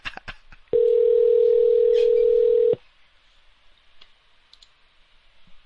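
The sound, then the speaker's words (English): A few quick clicks, then a loud, steady telephone ringing tone on the line of a call to Sonny Eanes, lasting about two seconds, followed by faint line hiss and quiet. “We'll see how long it takes Sonny Eanes to answer his phone.”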